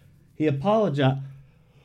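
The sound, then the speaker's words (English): A single drawn-out voiced yawn, fairly loud, its pitch and tone sliding over about a second before fading out, with no other sounds around it. “I shouldn't be yawning during my own podcast.”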